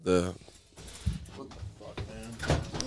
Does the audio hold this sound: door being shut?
yes